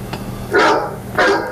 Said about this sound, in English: People, the dogs are calling.